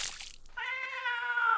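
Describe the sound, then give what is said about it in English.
On a cold late afternoon a branch over a small stream snaps and a black cat falls into the water: a brief noisy rush like splashing water gives way to the cat's loud, drawn-out yowl that holds steady for about a second, with no talking. “One late afternoon, while crossing a branch above a small stream, the branch snapped and the black cat fell into the water below.”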